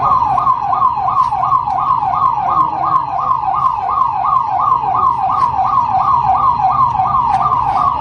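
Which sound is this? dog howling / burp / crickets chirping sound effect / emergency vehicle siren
emergency vehicle siren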